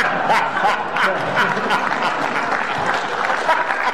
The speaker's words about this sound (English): I like the applause for drugs.